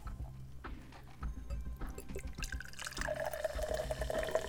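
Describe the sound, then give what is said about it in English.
Mountain Dew Voltage soda from 2008, a blue raspberry citrus drink, is poured into a glass, starting with soft splashing and gurgling, then a steady liquid stream whose pitch rises as the glass fills. Fairly loud, with no talking. “Oh, this is very blue in here, but when you pour it in a glass, it's almost like pool water blue.”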